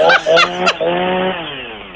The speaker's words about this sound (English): You got the chainsaw. You're not going to get a fresher tree.